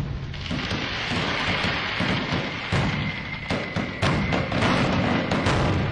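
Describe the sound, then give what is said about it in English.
Fireworks going off for a March 1st celebration: a dense, continuous crackling roar punctuated by several sharp, loud booming bursts, with no voices. “I have some fireworks to play for this celebration, but I just want to warn everybody, they're really like startling.”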